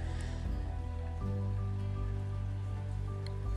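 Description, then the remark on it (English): Steady rain falls outside on a cool, gray day, a continuous soft hiss and patter blended with a low, constant droning hum. No one speaks. “It's raining outside and it's a bit cool and kind of gray and depressing outside, and maybe this recording sounds gray and depressing too.”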